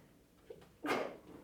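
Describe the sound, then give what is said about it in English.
A single sudden sneeze bursts out after a brief, faint intake of breath, a sharp hissing explosion that fades quickly into quiet background noise. “Bless you.”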